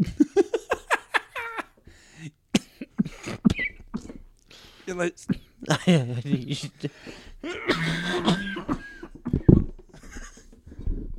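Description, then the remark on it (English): A person's deep, painful coughing fit: a rapid burst of harsh, hacking coughs, then strained, wheezing, half-choked vocal sounds that sputter on for several seconds. “This cough, dude. It hurts so much.”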